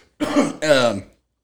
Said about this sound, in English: Man. I'm about to cough